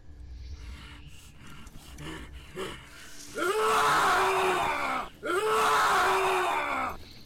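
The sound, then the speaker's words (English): Two long, loud, raging yells, a sound effect for a character going into a rage, follow a stretch of quieter rustling, each a harsh, strained cry lasting nearly two seconds, separated by a brief gap. “Sirenscape's down, so there's no yelling and ragey.”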